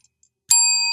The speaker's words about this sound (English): But it's a metal call bell, the smiley face, I think to counter our buzzers that we play every now and again, much like the Mad Cucks bell.